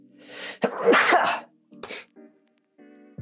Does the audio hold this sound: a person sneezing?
yes